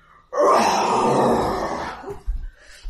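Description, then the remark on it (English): A human voice imitates a beast's roar, a character roaring at an oncoming war swarm: one long, loud, raspy growl lasting nearly two seconds, thick and harsh through the low and middle range, then fading into a few softer grunts. “And the grass flattens out as your roar echoes across the field.”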